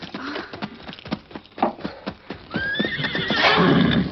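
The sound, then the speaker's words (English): A horse's hooves clop in a quick, uneven patter, then a loud, shrill whinny rises and wavers near the end, clear with no talking. “Here's my horse.”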